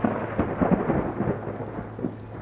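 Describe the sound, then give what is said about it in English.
A thunderstorm rolls on with a deep, continuous rumble of thunder over steady, hissing rain, with a few heavier swells in the roar and no voices. “The night was especially dark and windy, and the rain was threatening.”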